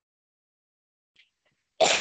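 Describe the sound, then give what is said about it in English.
A single sharp, harsh cough from a person with COPD bursts out near the end, following nearly two seconds of silence broken only by a tiny faint click. “Okay, that is one of the shortcomings of having COPD is uncontrollable cough, especially as it gets into the later stages.”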